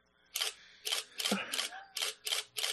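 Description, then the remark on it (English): A camera shooting in RAW fires its shutter in a rapid burst, about seven crisp mechanical clicks in quick, fairly even succession, moderately loud, with a faint voice murmuring briefly in the middle. “Man, that's shutter speed. And all of that in RAW.”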